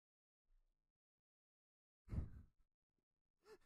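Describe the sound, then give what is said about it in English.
A single sharp gasp of breath cuts through near-silence, lasting under half a second, followed by quiet and then a brief voiced sound right at the end. “I just hear a gasp of breath and then nothing.”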